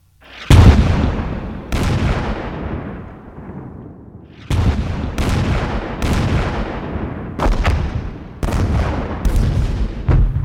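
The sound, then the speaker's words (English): German heavy guns fire on men of the 2nd Corps crossing the bridge at Veilly, booming repeatedly, about eight or nine loud, deep blasts at irregular intervals, each followed by a long rumbling decay that overlaps the next shot. No voices are heard. “When the men of the 2nd Corps crossed the bridge at Veilly, they started taking fire by German heavy guns.”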